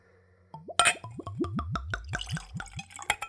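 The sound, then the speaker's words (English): Whiskey glugs straight out of the bottle, undiluted, into a clean, tulip-shaped Glencairn whiskey nosing glass in a quick run of about ten hollow, bubbling gulps, fairly loud, with no talking. “So, let's go for a pour.”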